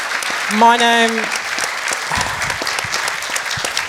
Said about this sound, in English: I'm just going to keep on clapping.